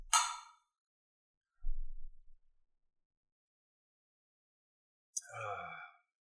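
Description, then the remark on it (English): Glasses of drinks clink together in a toast, a bright ringing tap at the start. A low thump follows, and then a second sharp clink with a brief breathy sigh after it. No one speaks. “Well, let's cheers to that. Let's cheers to this.”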